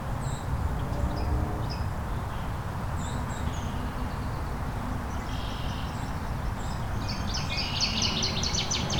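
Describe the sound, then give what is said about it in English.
A northern waterthrush sings, its phrases ringing out over a steady low rumble of running water or wind, scattered chirps early on, then a loud, rapid, descending run of bright notes near the end. “So we got a northern water thrush.”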